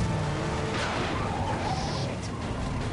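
Game sound effects from the beginning of Sonic Adventure 2, a big truck chasing the fleeing player: a steady roaring engine rumble with bursts of high tire squeal and skidding layered on top, loud and continuous, with no one talking.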